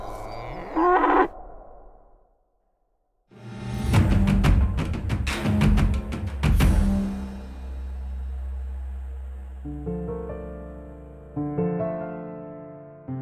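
Cattle moo in a series of drawn-out, low, loud calls, with a brief burst of clattering noise in the middle and no one talking.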